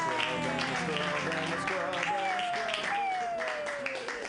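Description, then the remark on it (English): A comedy show crowd claps steadily and loudly for about four seconds for a comedian, the dense clapping mixed with cheering, whoops and shouted voices throughout. “Clap wildly”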